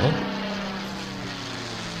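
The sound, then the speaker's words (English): A Mustang propeller airplane engine drones steadily throughout, a loud, sustained low rumble with a harmonic hum and no voices over it. “That would be Mustang sound effects.”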